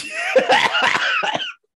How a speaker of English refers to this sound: Are you good? I'm good. I have a cough. Besides that, I'm good.